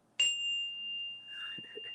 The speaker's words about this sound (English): I have my little chime here. So for those of you who have never been on one of my mindfulness hikes or practice with me, my chime I use as like sort of an affirming tool, if you will, or something that's when truth has been spoken.